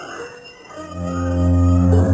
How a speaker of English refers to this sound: What's that? Oh my God. I can hear what sounds like bugles in the distance.